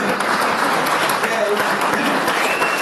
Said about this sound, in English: Oh, I got the applause break though.